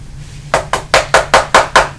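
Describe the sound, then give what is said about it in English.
A rapid series of seven sharp knocks on a door, evenly spaced and steady, each a crisp rap over a low background hum, with no one speaking. “Who's that at the door?”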